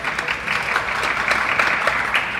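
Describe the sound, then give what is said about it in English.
A light smattering of applause from a Fiorina crowd, scattered claps forming a steady, moderate crackle throughout with no voices over it. “That was a slightly less light smattering.”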